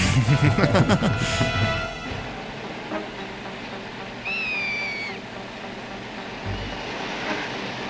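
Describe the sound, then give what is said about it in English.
A single high, whistling bird call, drawn out for under a second with a slight downward slide, rises clearly over a steady low rumble after a loud, busy burst of sound at the start. “Is that a bird?”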